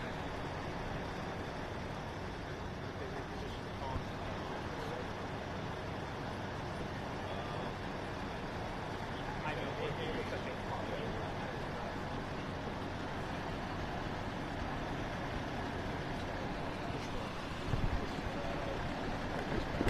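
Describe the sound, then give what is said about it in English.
A tow truck's engine rumbles steadily, a continuous low droning hum with a faint hiss on top, holding at a fairly even loudness for the whole stretch with no voices. “Back, we got the tow truck.”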